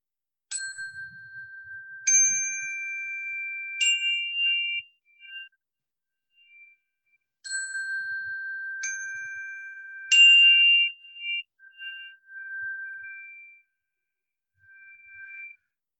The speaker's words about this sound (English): And then I always like to break up the energy with some chimes.